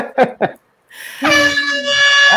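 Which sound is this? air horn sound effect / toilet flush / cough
air horn sound effect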